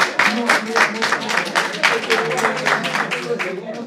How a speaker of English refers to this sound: You've entered there. Clap for her. She's been there.